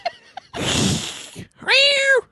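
A cat meows once, a clear, drawn-out call rising and then falling, fairly loud. Just before it comes a longer breathy, hissing noise, with a couple of soft clicks at the start.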